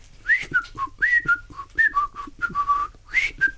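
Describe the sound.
Frank Skinner whistles a short, wavering tune, the notes rising and falling in quick succession with breathy air noise between them, the high notes turning to just blowing; no one speaks.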